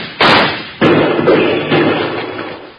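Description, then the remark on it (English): Three loud gunshots, fired at lizards, crack out at uneven intervals, each a sharp, heavy bang followed by a fading rumble, with no voices between them. “Well, if that's the case, Bill, let's shoot at those lizards some more and shake up Rocky's hearing again.”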